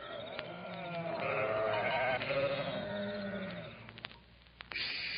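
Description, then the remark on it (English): A flock of sheep on the hills near Bethlehem at night bleat in a continuous overlapping chorus, several animals calling at once with wavering, nasal cries, fading slightly near the end before a few sharp clicks and another bleat. “Out there in the hills, shepherds were keeping watch over their flocks of sheep that night.”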